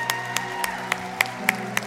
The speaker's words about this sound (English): Clap your hands and give him some praise for me.